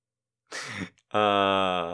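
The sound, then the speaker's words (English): A quick slurping sip of water, then a brief pause and a long, loud, satisfied voiced 'ahh' that holds steady until the end. “After we land on this little sip of water.”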